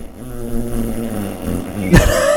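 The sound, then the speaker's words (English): A Disney fart sound effect: a low, buzzy, sputtering rumble with a wobbling pitch for a couple of seconds, ending in a louder burst that squeaks upward. No one speaks. “But she wanted to, she's like, you should really just play some fart sounds.”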